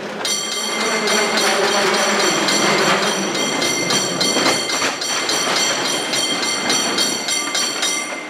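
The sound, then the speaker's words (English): A San Francisco cable car rumbles along its track on the city's steep streets with a steady mechanical roar, metallic clatter and high ringing whines layered over a continuous grinding drone throughout. “The cable cars plunge down the very steep streets of San Francisco and then, of course, climb back up.”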